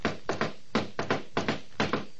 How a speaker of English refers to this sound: I rapped on the door marked Adam Flynn